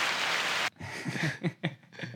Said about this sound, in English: It's weird to cut that off just so sudden because, like, there's a reason they stopped applauding so suddenly.